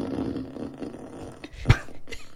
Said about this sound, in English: That was a long and crispy one. Would you like me to play another fart sound?